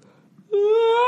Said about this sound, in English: God, I can't stop yawning.